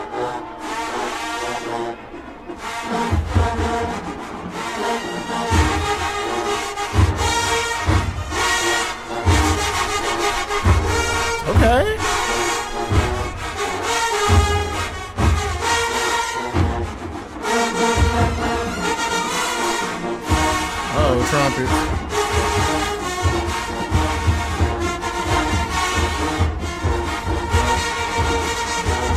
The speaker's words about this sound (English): Oh, hell no. What is going on with the trumpets, bro? Y'all doing too much, bro. It ain't it, bro. The skate is just y'all. It didn't sound good, bro.